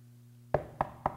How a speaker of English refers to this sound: You knock on wood.